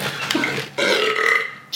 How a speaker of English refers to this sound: Oh, I got a burp. Hold on.